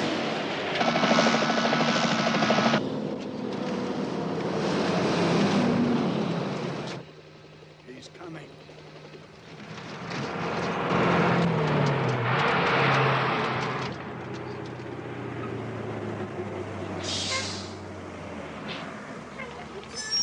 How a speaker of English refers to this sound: See? That's the ominous squealing, and that's brakes.